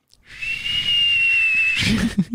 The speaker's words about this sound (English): It's a dog whistle, dude. Okay, never mind. He's wearing a dog whistle, ladies and gentlemen.